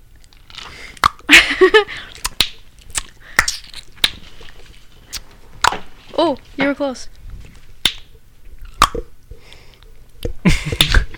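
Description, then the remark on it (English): A series of sharp, loud tongue clicks, made by pressing the underside of the tongue to the roof of the mouth for suction and snapping it down, pops out at irregular intervals, each a crisp wet snap, with people talking and reacting between the attempts. “You gotta put the bottom of your tongue on the roof of your mouth, make the suction, and then slap that shit down.”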